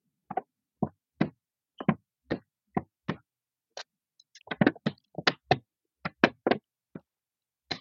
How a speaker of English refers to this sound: Now I'm just taking one of them. I always like to challenge people to hear the smallest possible sound, just one corner of the paper.